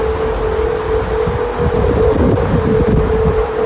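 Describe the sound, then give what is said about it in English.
A steady, eerie mid-pitched hum drones without a break over loud, gusty wind rumble, the Golden Gate Bridge in San Francisco humming in the wind with no cars on the bridge and no voices. “Now you can finally hear the noise the bridges are making.”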